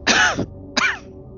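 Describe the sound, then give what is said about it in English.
A woman, the character Maria, coughs twice in quick succession during a dialogue, two harsh, raspy bursts with a brief pause between them, no talking around them. “Maria coughs a few times.”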